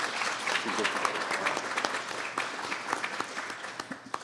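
A crowd applauds steadily, a dense wash of many overlapping claps with sharper individual claps standing out, holding at a fairly even loudness before thinning slightly toward the end.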